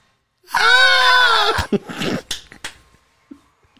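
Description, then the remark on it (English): A loud, sustained, high-pitched scream-like wail, then a burst of sharp clattering crashes: a person vocally imitating people screaming and dishes crashing as a table is flipped over in a restaurant. “So the waiter comes over to our table, and then suddenly a table at the front and gets flipped over and dishes crash and whatever ambient music stops and a couple people scream.”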